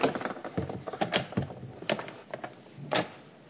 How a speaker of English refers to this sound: I want to open up our big double doors to the church.